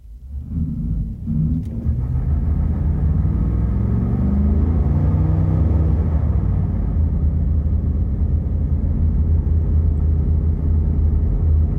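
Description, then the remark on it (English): A pickup truck with a 7.3 engine doing a burnout, roasting its rear tires with a lot of tire smoke: a loud, steady low engine rumble with a rising rev early on, continuous for about twelve seconds, with little audible tire squeal and no talking. “It is roasting the crap out of the rear tires.”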